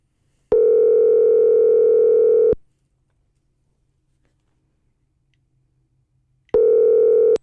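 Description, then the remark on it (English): A steady, buzzy telephone tone sounds while a call is placed: a loud two-second burst, about four seconds of near silence, then the tone starts again. No one speaks. “Just dial the phone.”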